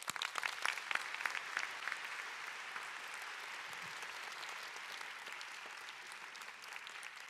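A crowd claps steadily for several seconds, a dense wash of many hands with sharper individual claps standing out early on before it settles into an even, sustained round of applause, given again for the pastor after his sermon.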